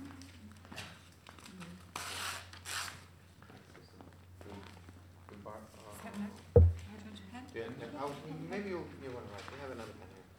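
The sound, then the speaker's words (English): Paper rustles and crinkles in a few scratchy bursts, with a sharp thump midway, while a person talks quietly in the background and then more clearly toward the end. “I have some paper, I could just show you.”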